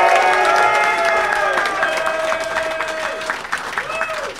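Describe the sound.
A crowd applauds loudly and steadily, with sustained clapping throughout, mixed with high whoops and cheering voices rising above the claps before the sound begins to taper slightly at the end.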